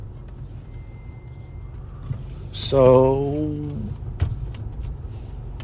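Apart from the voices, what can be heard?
car backing up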